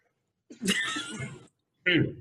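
Two coughs: a longer, rough, throaty one, then a short sharp one after a brief pause, with no talking in between.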